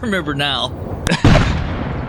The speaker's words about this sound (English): Oh, holy shit! The captain did it with the cannon again!